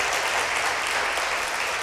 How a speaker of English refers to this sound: So give them a round of applause if you can.